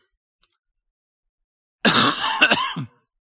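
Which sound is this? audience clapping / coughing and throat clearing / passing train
coughing and throat clearing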